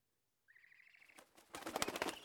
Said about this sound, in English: It's an owl, Jess, another bloody owl.